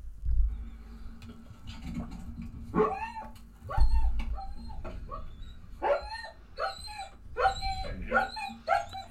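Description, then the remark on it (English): A German Shepherd dog at the vet whimpers and whines in a series of high, wavering cries with a few short barks mixed in, fairly loud, with low rumbling noise underneath. “My big brave German Shepherd. Not afraid of anything.”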